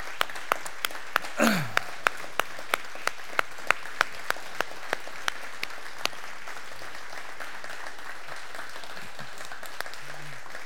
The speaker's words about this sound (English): And before we do that, can we affirm him by just giving him a hand clap and a round of applause? Let's stand up and do this.